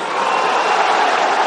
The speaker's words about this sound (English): Three, I want everyone in this arena to scream at the top of your lungs, the Mayweathers.